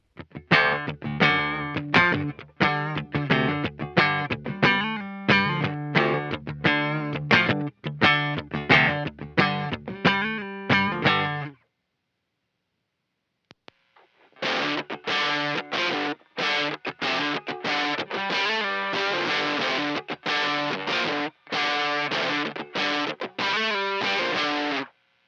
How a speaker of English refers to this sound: This pedal has good mid-range, and it's great for those lead lines. It stacks really well. It can be used as a third or even a fourth stage overdrive distortion. This pedal's not transparent at all.